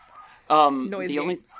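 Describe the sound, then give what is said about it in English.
Dogs bark in one loud, sharp burst that trails into a drawn-out, whining yelp lasting under a second, with quieter background murmur before and after. “Oh my goodness! What is going on with those dogs?”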